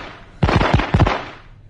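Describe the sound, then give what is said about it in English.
A rapid burst of gunfire shot into the ceiling of the England dressing room: several sharp, loud bangs fired in quick succession over about half a second, followed by a fading rumble. No one speaks. “Now, I don't have to shoot the ceiling again to listen to what this rosy mush prick has got to say.”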